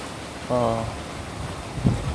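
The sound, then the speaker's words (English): A steady, even hiss of rain falling outdoors at an apartment complex fills the background throughout, around 6 o'clock, with a brief murmur of a voice partway through and a soft knock near the end. “it's raining right now.”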